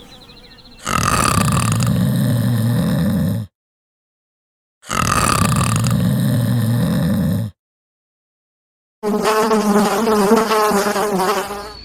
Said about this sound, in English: A sharp buzzing sound pierced the morning calm.